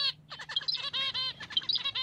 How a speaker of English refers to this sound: For this study, Woolley used burlap strings that, when yanked, played a male finch's love song.